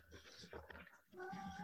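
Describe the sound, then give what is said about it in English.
An old cat, just woken from a nap, lets out a drawn-out, fairly loud meow, following a brief stretch of indistinct talking. “Julia, we're recording a show. Can you put the cat away?”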